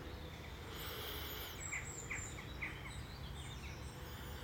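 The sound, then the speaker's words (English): Soft birdsong over a steady outdoor hiss: high thin whistles and a few quick repeated chirps, fairly faint, with no one talking. “It's great if you can do this in nature, but if not, you can do it to the bird song here.”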